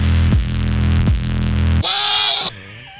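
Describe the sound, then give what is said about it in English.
A goat's mating call: loud, harsh bleating that rumbles in pulsing bursts, then rises into a strained, high-pitched cry, with no other sounds around it. “replaces the round with a goat mating”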